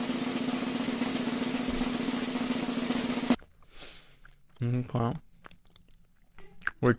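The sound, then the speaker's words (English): Chewing of soft sweet balls: a dense, crackly mouth noise for a few seconds, then quieter munching with a short murmured voice. “We're chewing.”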